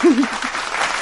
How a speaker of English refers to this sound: Round of applause. Yay.